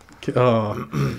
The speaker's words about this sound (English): I was going to clear my throat, and it was a bit more aggressive than I thought.